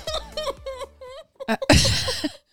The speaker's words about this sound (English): Did you just burp, sneeze, and cough at the same time? Something like was that. Like, oh my God.